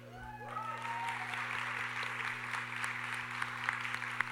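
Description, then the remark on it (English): An audience at the Emerging Voices Final Reading, an annual literary event, applauding steadily, a dense wash of many hands clapping at once that holds for several seconds, with a faint low hum underneath. “Don't be shy about claps. I like a clapping audience.”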